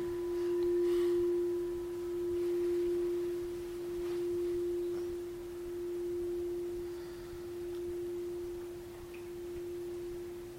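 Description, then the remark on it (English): A meditation bell's long, steady tone hums on its own, its volume pulsing in slow, gentle waves as it gradually fades. No one speaks. “As the sound of the bell disappears, letting other sounds appear in the field of awareness.”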